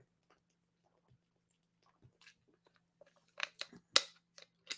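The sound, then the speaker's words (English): Someone drinking water: a mostly quiet stretch with a few soft ticks, then a short burst of crinkly clicks and gulping swallows toward the end. No one speaks. “Commercial break while I drink water.”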